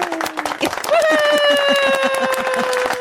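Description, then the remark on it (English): Applause celebrating news that Elon reinstated a parody account: quick, steady clapping throughout, joined by a loud sustained tooting tone, like a party horn, that starts low, then jumps higher and holds with a slight downward slide. “Is there an applause?”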